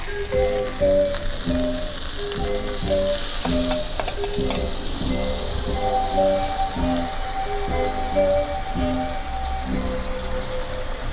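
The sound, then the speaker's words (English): Steady, loud sizzling and crackling of food frying in a hot pan after a drizzle of butter, continuing throughout, with soft tonal background music underneath and no one speaking. “Let's give it a drizzle of our buttery, and then we'll cover.”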